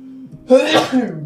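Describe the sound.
A single loud sneeze bursts out after a moment of faint low hum, its breathy, voiced blast trailing off quickly.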